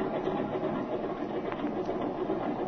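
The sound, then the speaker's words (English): A propeller airplane engine roars steadily at high power during takeoff, a dense, continuous mechanical drone that stays loud throughout, with no voices. “You take her off. And remember to keep on the little right rudder to allow for engine torque.”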